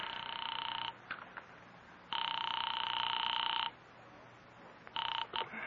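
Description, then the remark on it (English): A telephone call placed through an operator to North Tacoloma, California, rings out in steady electronic bursts, one long tone after a short opening one, separated by pauses, clear with a faint hiss between rings and no voices. “I am actually ringing North Tacoloma City.”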